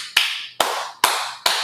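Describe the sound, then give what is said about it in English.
Four sharp, loud imitated claps in a steady, evenly spaced rhythm, each a crisp slap with a short fading tail. No talking. “And you're like, the fuck y'all clapping for?”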